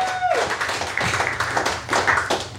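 A crowd applauds a guest coming up, with dense, steady clapping that fills the whole stretch, preceded by a brief descending whistle-like tone at the very start.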